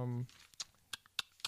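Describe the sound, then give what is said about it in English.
Handbook pages turning: after a brief trailing voice, four crisp papery swishes and rustles come in quick, uneven succession, fairly faint overall. “If you hear that, that's my pages turning.”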